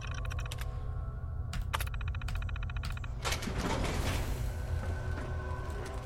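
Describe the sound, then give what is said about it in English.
A security door mechanism runs through a series of quick mechanical clicks and ticks, then releases with a rising, hissing rush as it opens, all over a steady low hum. “Security door. Open it. Open door.”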